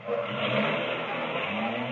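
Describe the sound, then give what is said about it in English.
A car engine runs steadily and loudly as a car drives in, a dense rumbling drone with a faint revving quality, carrying on without pause and with no one speaking. “Hey, Costello, here's another car driving in.”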